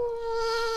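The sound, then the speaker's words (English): A steady mosquito whine drones without a break, a thin high-pitched hum with layered overtones that holds even and loud throughout. “And then a mosquito.”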